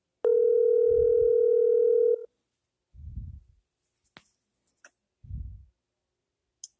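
A steady, loud telephone dial tone hums for about two seconds and cuts off, followed by a few soft low thumps and scattered small clicks, with no talking.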